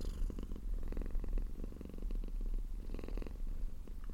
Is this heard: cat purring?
yes